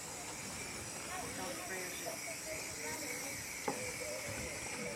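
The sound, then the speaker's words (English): A spray paint can hisses in a steady, unbroken burst for several seconds as it sprays a circle for an illustration, a bright airy rush with a faint click partway through. “So I've got some spray paint here. Let's see if it works.”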